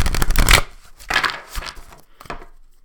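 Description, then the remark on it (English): A deck of oracle cards being shuffled, three or four quick papery bursts of rustling and flicking with short pauses between, fairly loud, with no one speaking. “Okay, shuffle.”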